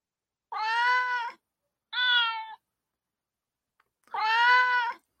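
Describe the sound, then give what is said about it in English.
A cat meows three times, two longer drawn-out calls framing a shorter one, each a clear harmonic cry separated by brief silences. “The cats have taken over the show.”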